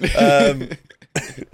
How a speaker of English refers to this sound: Sorry. Bad cough.